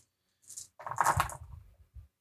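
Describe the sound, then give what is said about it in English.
A quick clattering rattle of dice tumbling and skittering across a table during a tabletop game roll, a brief scrape followed by a burst of clicks that settles within about two seconds, moderately loud. “You succeed on a 4, 5, and 6 and you reroll sixes.”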